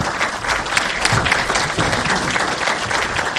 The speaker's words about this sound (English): can we give him one more round of applause? Well, that's the close of this Future Tech session from Legal Tech West Coast in Los Angeles.